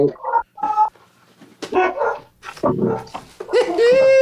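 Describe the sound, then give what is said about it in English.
Several wild dogs bark and yap nearby in quick, irregular bursts, with overlapping yelps and a rising whine near the end; no one is talking. “Perceived dogs are near us. Wild dogs.”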